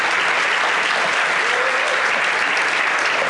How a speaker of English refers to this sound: Give it up. Let's stand up. Stand up and cheer for him.